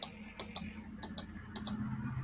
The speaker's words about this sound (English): And can you stop clicking?